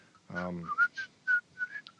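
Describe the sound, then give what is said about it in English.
A person whistles a short, lively melody of quick, clear notes, the theme tune from the film Pirates of the Caribbean, preceded by a brief voiced hum. “Somebody whistling Pirates of the Caribbean.”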